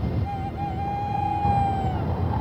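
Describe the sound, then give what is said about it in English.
A sound effect of a single long, drawn-out owl hoot rings out steadily over a constant, rumbling rush of wind. No one speaks. “Wind and owl hoots.”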